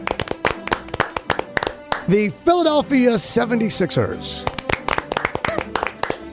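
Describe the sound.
A string of sharp hand claps in a quick, uneven rhythm, pausing while a man announces something in the middle, then resuming with steady loud clapping.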